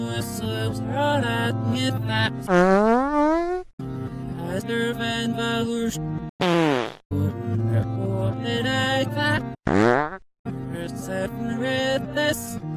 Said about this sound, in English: Again. Again. One more time, with fart sounds.